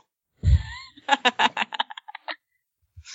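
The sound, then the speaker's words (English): A voice makes popping mouth noises imitating a bee's head popping: a low breathy burst, then a rapid run of about ten sharp pops that speed up and fade, with a final soft click. “All right, you just sounded a little bit enthused at the idea of head popping. Tell him to make that noise again.”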